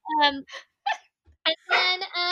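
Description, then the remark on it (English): A dog wearing a cone barks and yelps in several short bursts with uneven pauses, ending in a longer, drawn-out whining howl. No talking is heard. “And then, so she helped my dog barking with this cone.”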